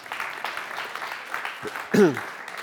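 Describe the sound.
An audience claps steadily for a few seconds, a dense patter of many hands, with a brief voice or whoop rising out of the applause near the end.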